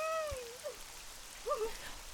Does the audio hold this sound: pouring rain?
yes